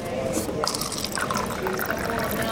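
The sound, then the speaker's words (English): Water runs steadily from a water cooler into a cup in a church basement, a continuous gurgling fill with a rising pitch as it pours, with faint background murmur. “Right next to it is a water cooler that everybody uses instead.”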